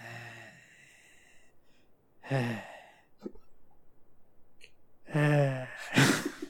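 Heavy, close-up breathing right against a microphone: several loud, voiced sighs and huffs in bursts, with a sharp snorting gasp at the end and quiet pauses between.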